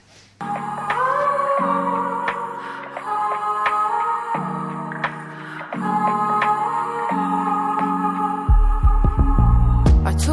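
A mellow neo-soul song intro plays with warm sustained chords over a shifting bass line and soft percussive accents, no vocals yet; a deeper, fuller bass enters near the end.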